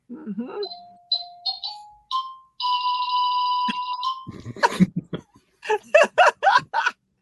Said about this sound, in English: Let me go check the door. I'll be right back. That's your doorbell?